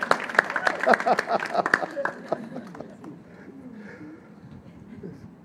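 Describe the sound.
An audience breaks into a brief round of hand clapping, a quick scatter of sharp, uneven claps that dies away after a couple of seconds, leaving voices murmuring underneath.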